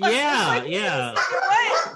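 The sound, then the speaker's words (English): A dog lets out loud, drawn-out vocal barks that rise and fall in pitch, running continuously with barely a pause. “There's a dog back. Oh, no, he wants to that. Say hi very loudly on repeat.”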